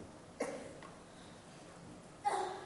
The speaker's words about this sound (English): Bless you